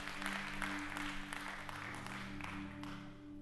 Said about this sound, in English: Come on, why don't you clap your hands this morning? Great.